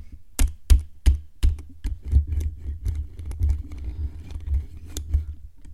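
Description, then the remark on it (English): Rapid, hard keystrokes hammer a keyboard in an uneven burst of sharp clicks and thuds, with a few loud spaced strikes at first, then a denser clatter of quicker taps. “ASMR, you're smashing my osu.”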